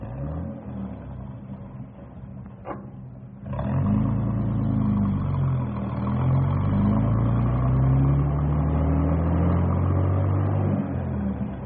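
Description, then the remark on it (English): A bus engine idles with a rattly rumble, then surges loudly at about three seconds and revs with rising and falling pitch as the bus pulls away, with no voices. “Well, we better get this bus rolling because it's getting close to pickup time.”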